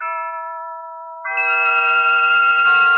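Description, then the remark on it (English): A door chime rings two sustained tones, a softer bell-like note followed by a louder, brighter one that holds and shimmers until the end, with no voices. “The door chime startled me.”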